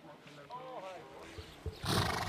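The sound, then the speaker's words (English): A polo pony gives a brief, wavering whinny, rising and falling in pitch, followed by a burst of breathy snorting noise at the end, moderately loud. “They're called polo ponies because they're smaller.”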